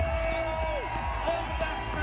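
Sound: audience applause and cheering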